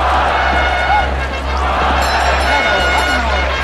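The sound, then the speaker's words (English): A large crowd at a bullfight roars and cheers continuously, a dense, loud wall of massed voices filling the whole stretch. “And the carnival immediately begins, gradually mixing rain, thunder, bullfight,”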